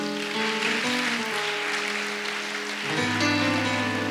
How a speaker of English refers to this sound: So thank, let's clap for the Lord.